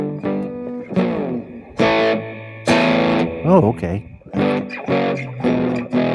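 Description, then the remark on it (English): Harsh, distorted audio with buzzy, saturated tones and warbling pitch sweeps, loud, with a voice speaking briefly amid the crunchy, processed sound. “Had some distortion here.”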